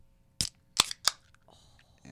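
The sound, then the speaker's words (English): A can of Breckenridge Brewery Mile High beer being cracked open: three sharp, bright clicks and pops in quick succession, followed by a faint, soft fizzing hiss. No one speaks. “Did you open yours yet?”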